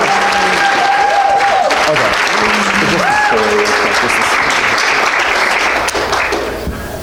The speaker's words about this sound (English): Go ahead and give her one more round of applause.